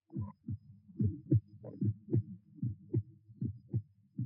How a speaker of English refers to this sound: He was brought to the gibbet, his heart pounding.